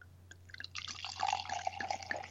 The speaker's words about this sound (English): All right, I got the top off. And the pour.